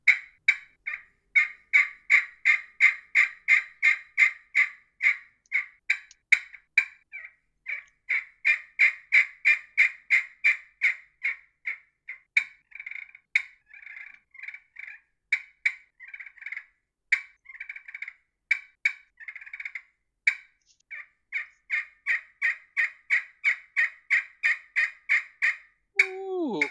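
A wooden turkey call made of bloodwood imitates gobbling in long runs of rapid, raspy, high-pitched notes, easing into softer rolling sounds midway before a final loud burst. No one speaks.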